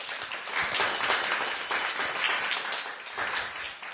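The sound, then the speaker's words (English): A sustained round of applause at a school for a new staff member, many hands clapping in a dense, steady wash of sound that holds at an even, moderate loudness throughout. “So we were so happy to have her join our staff later this school year, and wanted to give her a big round of applause.”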